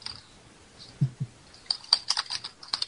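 Hard, rapid typing on a computer keyboard, a flurry of sharp clacks after a couple of heavier thumps, fairly loud with no talking.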